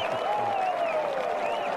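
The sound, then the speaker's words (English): A golf gallery claps and cheers in a steady, dense roar, with rising and falling voices and whistle-like tones over the applause, reacting to a shot by Tiger that almost went in. “See, that would have woke me up right there, all that cheering.”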